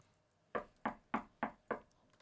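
Five sharp knocks on a door in a steady, evenly spaced rhythm, fairly loud, with nothing else in the background.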